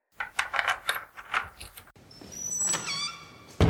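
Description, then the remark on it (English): A string of quick clattering, jangling sounds, then a door creaks open with a long rising squeak before a sharp bump at the end, as someone arrives and opens the door to the club. Clear, with no voices. “Okay, stay quiet with me and shout out "Surprise" when he opens the door.”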